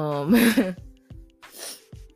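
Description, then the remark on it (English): A short, breathy nasal sniff from a person with allergies follows a brief voiced murmur. There is a quiet pause between them, with a faint steady hum in the background. “I hope y'all didn't hear me sniff.”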